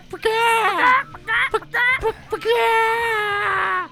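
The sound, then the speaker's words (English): A person imitates a clucking chicken with loud, high-pitched squawking bursts: a few short choppy clucks followed by a longer drawn-out squawk. “When he's cawing like a chicken, it's weird.”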